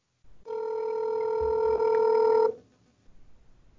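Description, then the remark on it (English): A single steady electronic phone ring tone of a call ringing on the other end of the line, played over a speakerphone, lasting about two seconds before cutting off into near silence. “It's ringing.”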